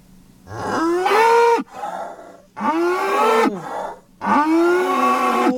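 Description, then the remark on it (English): A cow moos three times in a row, each call a long, loud, drawn-out low bellow with short pauses between, with no talking. “Why does it matter which way the cow's facing?”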